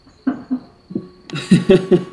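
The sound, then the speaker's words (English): Dice rattling and clattering: a few soft, separate knocks at first, then a busier burst of sharper clicks and tumbling rattles. No one speaks. “No, if you listen closely, you hear him rolling dice.”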